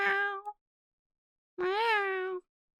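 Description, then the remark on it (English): A cat meows twice: a short, clipped mew, then after a brief pause a longer, drawn-out meow that rises and falls in pitch. No voices or other sounds. “Meow. Meow. You're back now. Pressing against me.”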